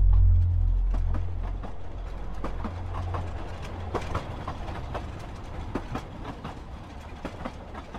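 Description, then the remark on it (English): A fast freight train rumbles along the rails with a heavy low-end roar and a steady, rapid clickety-clack of wheels over track joints, loud, with no voices. “The train was speeding so fast, Cassie saw nothing but a blur through the crack in the door.”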